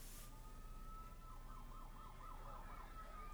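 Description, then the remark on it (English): A police car siren wails and warbles in a rapid rising-and-falling pattern over a steady low engine rumble, with no voices. “And the cops just now show up 30 minutes later in New York.”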